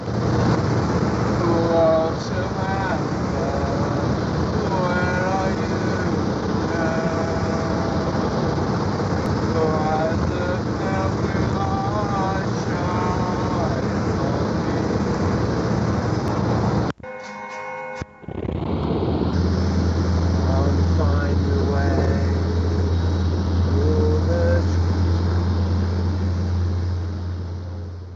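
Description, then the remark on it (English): A person driving a car sings loudly while recording themselves, over the steady, droning rumble of the moving car's engine and road noise, with a brief dropout partway through before the singing and engine hum resume. “My guess is somebody driving a car. Yeah. Recording themselves singing.”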